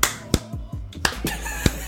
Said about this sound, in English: Maybe we should do another clap sync because I purposely thought we could do another one if I fucked that up, but we're not.